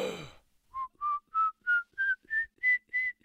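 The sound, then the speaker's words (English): A brief rush of noise, then a whistle of nine short, evenly spaced notes that climb steadily in pitch, each a clear pure tone, fairly loud and alone. “And then we hear a whistle.”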